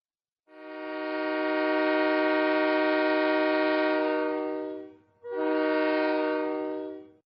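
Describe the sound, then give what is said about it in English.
A loud train horn sounds one long, steady blast, then a brief pause and a second shorter blast, with a low rumble of the train running underneath as it comes to a halt. “It's time to bring this train to a halt.”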